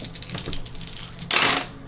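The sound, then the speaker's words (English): A rapid series of light plastic clicks rattles for about a second, then a louder clattering burst as dice tumble and settle on a hard surface, with no talking. “Ooh, this is good dice. Those are really excellent dice.”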